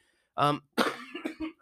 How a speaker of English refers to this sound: Wow. I almost made it through without coughing, but I didn't.